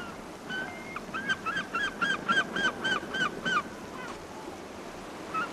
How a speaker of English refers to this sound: Arriving to the Brooklyn beaches and stepping out of your train or car, you'll immediately hear the sound of the waves and seagulls. It's sometimes hard to believe you're in New York City.